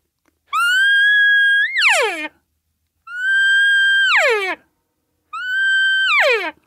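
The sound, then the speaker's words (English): Three cow elk calls made on a diaphragm call. Each is a loud, reedy, high-pitched whine that holds steady, then breaks and slides down, with short silent gaps between. “So it just kind of let your tongue fall away, and then you'll start hitting the pitches of a cow call.”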